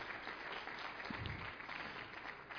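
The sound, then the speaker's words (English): A crowd applauds steadily, many hands clapping in a dense, continuous patter that holds an even level throughout with no voices standing out. “How about another hand clap?”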